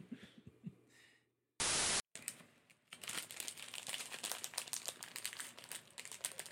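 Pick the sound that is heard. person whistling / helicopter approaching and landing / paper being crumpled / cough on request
paper being crumpled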